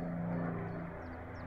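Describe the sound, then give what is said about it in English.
A steady, low airplane engine drone from a plane in flight, a constant hum with a faint tonal whine riding on top, unbroken from start to finish and with no voices. “This plane is that metaphor.”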